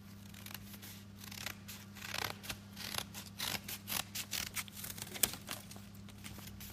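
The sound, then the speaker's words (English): Scissors snipping around a paper number 7 shape, a quick irregular run of crisp cuts with faint rustling, over a steady low hum and no voices. “So, I've got a number 7. Let me cut round this.”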